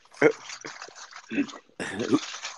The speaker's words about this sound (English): Anyways, someone's swimming or something, jumping in the water. What the hell's going on?